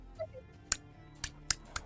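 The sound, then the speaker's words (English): Loud, sharp snapping clicks ring out four times at an uneven pace from just over a snowy hill, a huge vibrating sound, after a couple of faint chirping notes at the start. “Snapping, clicking right over this hill. This huge, loud, vibrating sound that you can almost feel through the snow. And this trill.”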